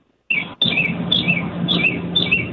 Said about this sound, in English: I love the bird ambiance in the background.